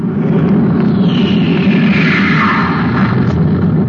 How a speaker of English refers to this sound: Hey, listen, the spaceship.